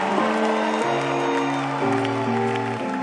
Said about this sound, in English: Wow. Somebody give a clap offering.